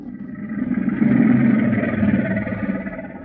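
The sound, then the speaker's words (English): Two crocodiles roaring: deep, rough, growling rumbles that overlap and swell in the middle, sustained for a few seconds with no speech. “That's a couple of crocodiles roaring.”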